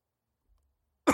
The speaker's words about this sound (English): Excuse me. Sorry, didn't mean to cough right in your ear there.